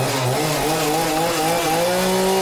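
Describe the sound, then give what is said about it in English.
A chainsaw cuts through crayon wax with a loud, continuous buzzing whine whose pitch wavers slightly as the blade bites in. No one speaks. “This keeps overheating. Let's just sit and reflect on our journey as we wait for new power tools.”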